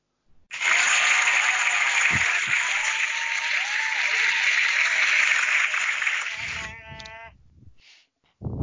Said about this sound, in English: We need the applause for the Coach of the Year.